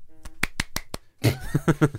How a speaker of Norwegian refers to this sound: nå vil du klappe.